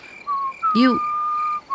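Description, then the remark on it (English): A person whistles a clear, sustained note that holds steady with a slight dip in pitch, briefly broken by a short voiced sound partway through before the whistling resumes. “That tune you're whistling.”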